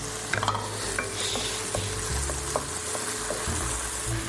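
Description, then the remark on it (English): Tomatoes sizzle and crackle steadily in a hot pan as the heat is turned back up so they cook down and soften, with scattered utensil scrapes and taps as they are stirred; no voices are heard. “we are going to turn the heat back up so that the tomatoes can now cook down.”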